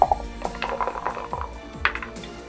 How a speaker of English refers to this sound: 18 on the dice, so 26. That's very good, that's a hit.